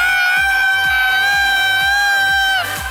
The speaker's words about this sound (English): Okay, that's a lot of screaming. This is just interrupt Noob Noob Day, isn't it?